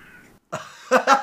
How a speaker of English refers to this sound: What the fuck? Your cat just made a grudge noise at my dog.